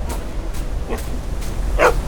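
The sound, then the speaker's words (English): A dog, Buzz, barks at a helicopter in a few short, sharp bursts over a steady low rumble, the last bark loudest and highest, with brief gaps between them. “Hang on, Buzz is freaking out.”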